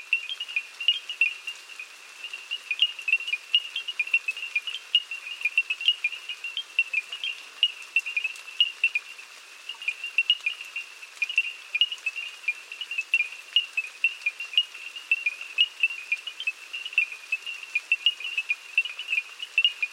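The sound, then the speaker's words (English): A night chorus of crickets and frogs on the banks of the Danube near the village of Crisan, Romania: a dense, steady high-pitched trilling that pulses continuously at a moderate level throughout, with no voices. “We leave you this week at the banks of the Danube, near the village of Crisan in Romania, whose residents are serenaded each night by crickets and frogs. Bernard Fort recorded this chorus.”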